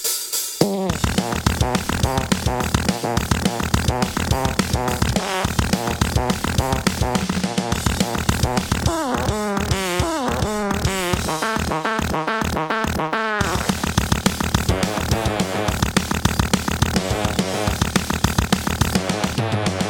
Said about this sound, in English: This guy's playing guitar, and he's got a pedal known as the fart pedal that he will turn on after playing through the riff one time.